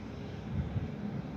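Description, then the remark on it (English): A quiet, steady low rumble of cars passing through a rainy Taco Bell parking lot in Deptford, New Jersey, with a soft wash of hiss above it and no voices. “Cars are going by.”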